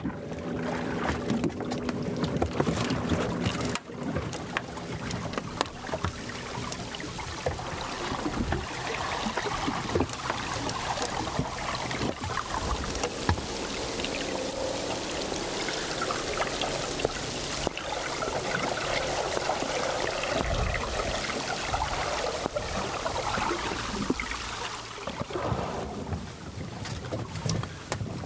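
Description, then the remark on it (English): Steady drone of several whale-watching boats on open water, engine rumble mixed with wind buffeting the microphone and a wash of water noise, continuous for the whole stretch with no voices. “Unfortunately, there's several whale spotting boats as well, so we've got some noise to compete with.”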